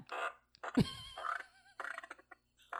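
A fart machine lets out several blaring, raspy bursts in quick succession, one sliding down into a deep, rumbling low thump, with brief gaps between the noises.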